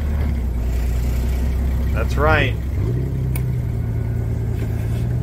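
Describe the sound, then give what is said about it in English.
A forklift engine drones steadily, then revs up briefly and settles at a higher, constant pitch, with a short spoken remark partway through. “Guess who's running the forklift?”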